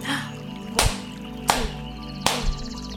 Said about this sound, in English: Now I want you to do 3 loud claps.